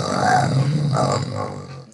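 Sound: voice imitating a growl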